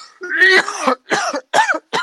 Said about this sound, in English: Excuse me. That was one of the worst coughs I had all day.